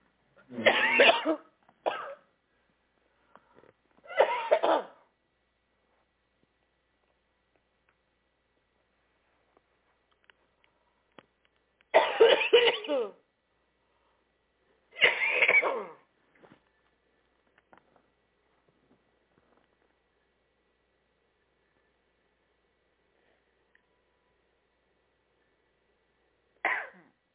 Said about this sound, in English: Lordy, maybe you should check me. I'm going to have to take 1 minute to cough this out.